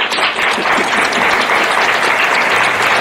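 A crowd applauds steadily, dense overlapping hand claps forming a loud, sustained wash of noise that fills the whole moment without pause.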